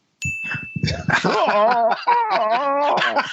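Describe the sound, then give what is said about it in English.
A sharp ringing ding opens, then a dog erupts into loud growling and yapping barks, its voice rising and falling in drawn-out, agitated bursts. “Here you go, dog. Chill out.”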